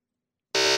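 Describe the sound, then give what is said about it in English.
After a moment of silence, a loud, harsh buzzer blares abruptly, a rich, raspy electronic tone that holds steady for a fraction of a second. No one speaks. “He almost didn't buzz himself, didn't he?”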